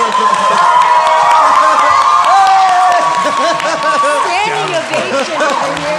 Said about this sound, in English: Standing ovation. I like that. This is legit the longest applause anything has gotten today.